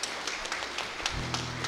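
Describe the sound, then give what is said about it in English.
A crowd applauds for all the mothers present on Mother's Day, in a steady, dense patter of many hands clapping at once, with a low sustained hum joining underneath toward the end. “Let's have a round of applause for all the mothers here today.”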